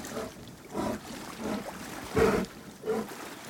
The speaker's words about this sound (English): Our guides tell us to listen closely, that we might be able to hear their heavy breaths mingle with the rushing water.